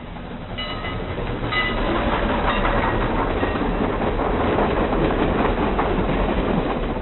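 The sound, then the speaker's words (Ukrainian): A train rumbles steadily along the rails, its low, continuous roar carrying a faint rhythmic clatter of wheels and high metallic squeals, loud throughout with no voices; a recording of a moving train included on the Voyager records. “Також на вояджерах є записи різноманітних звуків, зокрема, як їде потяг.”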